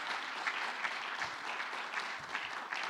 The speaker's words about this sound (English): If you are, give the Lord a mighty hand clap. Come on, give a mighty hand clap.